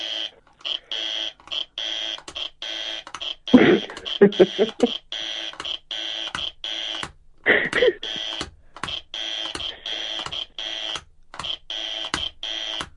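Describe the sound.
A harsh electronic wrong-answer buzzer blares in rapid repeated bursts, loud and insistent, while voices briefly break in over it midway through.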